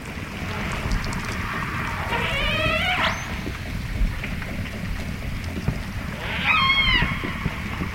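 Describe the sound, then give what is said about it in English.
Two bursts of rising, whistly orca family calls sound over a steady underwater rumble, with a faint rapid ticking of echolocation clicks from the hunting orcas scattered through the noisy background. “Part of what may sound like a boat to you is actually echolocation. You're hearing a tick, tick, tick, tick.”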